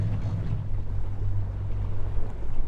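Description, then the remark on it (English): A boat's motor drones steadily as the boat comes in to land on the shore of the tundra, a low constant hum under rushing wind and water noise, with no voices. “lands the boat and we walk around a little bit on the tundra.”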